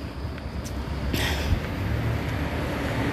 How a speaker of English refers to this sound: I'm sorry, another bus.